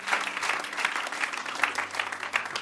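A crowd in Holland claps steadily and densely at a prayer gathering, a sustained wash of many hands applauding together at moderate volume, with no voices standing out.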